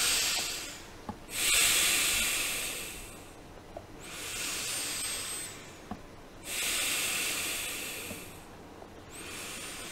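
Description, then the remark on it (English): Slow nasal breathing: three long airy inhale-exhale cycles, each a broad rushing hiss of air through the nostrils with brief quiet pauses between, no talking. “And also breathe initially at a pace so you can hear the air flowing through your nostril.”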